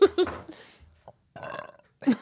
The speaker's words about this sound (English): Oh my God, I actually burped. I don't really burp loud.